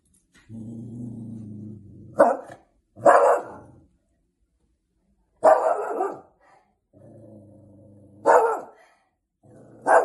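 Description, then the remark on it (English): A dog barks in loud bursts, with low rumbling growls between the barks, repeating several times over the stretch with short pauses. No one speaks. “It is a dog barking.”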